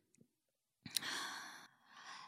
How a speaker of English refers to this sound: Ew. That breathing.